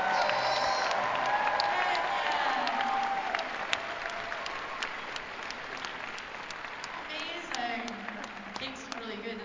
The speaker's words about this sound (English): Oh, a round of applause for the birthday boy.